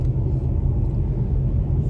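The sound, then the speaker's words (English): Steady low road rumble from inside a moving car driving through Las Vegas, a constant deep drone with engine and tire noise filling the low end, with no voices. “Let's take a drive through Las Vegas and see what's going on here today.”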